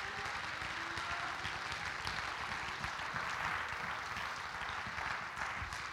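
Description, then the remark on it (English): A crowd claps its hands together to thank God, in a dense, steady wash of applause that keeps up at an even loudness for the whole stretch, with no voices standing out. “Come on, clap your hands and thank him together.”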